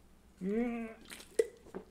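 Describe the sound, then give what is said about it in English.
A short wet slurp of a sip, with a few soft liquid clicks and a gulp-like pop, preceded by a brief hummed, rising vocal tone. “And let me, sip, break.”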